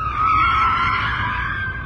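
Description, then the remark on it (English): A car's tires screech loudly as it skids to a halt in front of pedestrians, nearly striking a shopper, in one sustained, high-pitched skid that holds steady for about two seconds, easing slightly at the end, with a low engine rumble underneath. “Before he could complete his thought, a car screeched to a halt in front of them, nearly striking one of the busy shoppers.”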